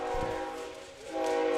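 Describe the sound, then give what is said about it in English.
A loud train horn blares continuously, its rich, chord-like tone shifting in pitch partway through as the train passes, with no voices. “Yeah, let that train. Train's pass coming.”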